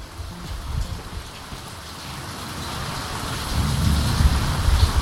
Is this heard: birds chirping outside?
no